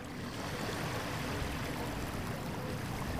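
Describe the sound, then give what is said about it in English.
Small waves of the Columbia River lap steadily against the shore at Collins Beach on Savi Island, a few miles outside Portland, Oregon, a continuous soft wash with a faint low rumble underneath, no voices present. “in addition to the sun and the sand and the small river waves, is that it's clothing optional”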